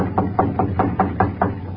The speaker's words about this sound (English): I'll knock on the kitchen door.